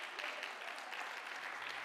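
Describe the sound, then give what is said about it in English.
A church audience, asked to get up on their feet and clap their hands, claps continuously: a dense, bright patter of many hands with no clear rhythm, steady in volume throughout and with no voices rising above it. “Can you say, I'm going to get up on my feet and clap my hands?”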